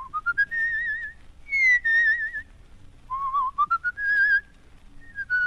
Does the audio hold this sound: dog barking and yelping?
no